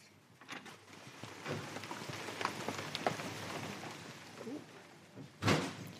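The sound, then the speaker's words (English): Steady rain patters outdoors in a dense, hissing wash, with a louder sharp knock or thump near the end and faint scattered movement. “Do we have to run through the rain to get there? Yes, there are some bits through the rain.”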